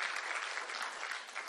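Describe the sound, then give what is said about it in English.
A Free Methodist Church audience claps steadily in appreciation, a dense patter of many hands merging into a continuous wash of applause at an even, moderate loudness throughout. “12 nods and 20 claps. That's not bad.”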